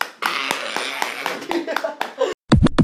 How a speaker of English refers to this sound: Y'all give her a clap.